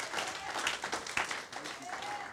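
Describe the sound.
An audience gives the Lord a hand clap of praise, a dense, continuous burst of applause, steady and fairly loud, with a few voices calling out over it.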